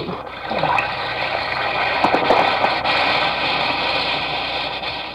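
An Alka-Seltzer tablet fizzes steadily for about five seconds, a dense, even hiss of bubbles sprinkled with tiny crackling pops, with no voices.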